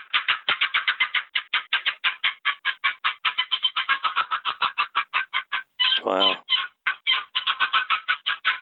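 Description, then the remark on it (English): A long box call imitates a turkey hen cutting and cackling: rapid, sharp, excited clucks in fast irregular bursts, loud, with a brief raspier yelp partway through. No talking. “And a long box, great for cutting, cackling.”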